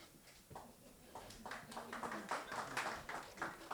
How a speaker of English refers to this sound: You clap for balloons, but you don't clap for my sermon, yeah? Is that how it is, yeah?